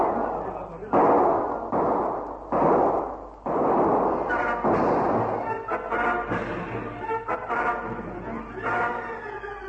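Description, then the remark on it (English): Four loud, harsh bursts of gunfire crack out in quick, uneven succession in the radio serial The Air Adventures of Biggles, as men open fire and characters drop to the ground. Excited voices then shout over a rough, continuing din, with a few more sharp reports mixed in. “Haynes drop to the ground to dodge the murderous fire.”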